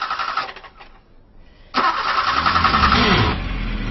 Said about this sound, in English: Maud picked me up at the local station, but was having some trouble getting the car started.